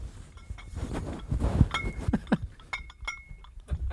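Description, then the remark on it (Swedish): Glass bottles clink against each other in a few sharp, ringing taps, with soft rustling and faint background noise between them. “Kan du lista på klirret?”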